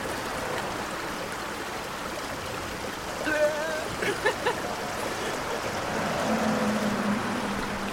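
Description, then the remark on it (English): A steady rush of flowing, crystal clear spring water, with a brief cluster of gurgling splashes midway as a cup dips in to take a drink and is lifted out. “But there's definitely clear, crystal clear spring water here, and I actually would put a cup in and drink this.”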